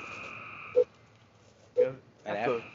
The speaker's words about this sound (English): You hear that frog?